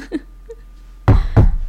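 Two loud, close knocks on a wooden surface, a quick double rap about a third of a second apart, following near-silence with only a faint murmur beforehand.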